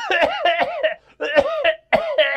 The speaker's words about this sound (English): Hey, can you tell me if this cough sounds weird?